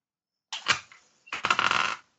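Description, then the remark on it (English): Someone types on a keyboard in two quick bursts, a short flurry and then a longer run of dense, rapid clicking keystrokes, moderately loud with no voices. “I'm not sure how to do this because somebody's typing.”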